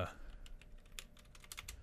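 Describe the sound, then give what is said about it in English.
Rapid, uneven clicks on a computer keyboard patter, a string of quick taps with short pauses between bursts, fairly quiet and heard on their own. “I can't type.”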